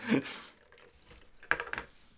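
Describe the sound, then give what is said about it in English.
Liquid being poured and spilling onto a table, with a splash near the start and a sharp splatter and drips later. “God damn it, I poured it on the table again.”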